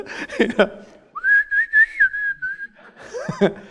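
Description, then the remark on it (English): A person whistles a short, wavering tune for about a second and a half, fairly loud, with brief bits of talking just before and after. “And so I don't know if he started whistling.”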